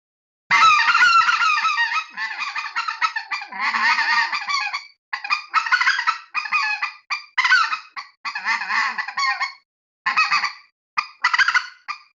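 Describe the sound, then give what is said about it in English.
A long, loud sequence of goose honks and clucks blown on a goose call in rapid bursts with short pauses, mixing drawn-out calls and quick choppy notes, a realistic extended calling sequence meant to make decoys seem alive to geese. “and that's just blowing for a long time, super realistic, trying to convince these birds that my decoys are alive.”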